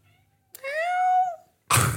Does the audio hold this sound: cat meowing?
yes